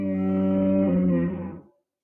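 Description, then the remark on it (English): A single deep, loud Diplodocus dinosaur bellow from a video game, rich and droning, holding steady for over a second before fading out abruptly, heard alone. “And this is Jurassic World Evolution. This is their sound effects.”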